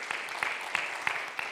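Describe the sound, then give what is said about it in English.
A church audience applauds with a steady wash of clapping, sharper individual claps standing out at fairly regular intervals. The applause is moderately loud and sustained, with no voices over it. “So I applaud you for that.”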